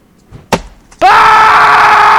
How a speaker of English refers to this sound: You hear a chop and then a guy scream, you know, the chopping a finger off.